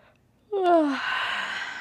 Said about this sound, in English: Now reach your arms above your head along the floor. Yawn. Or pretend to yawn.